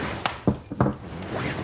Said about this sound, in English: I down the rest of my wine and place my empty glass on the coffee table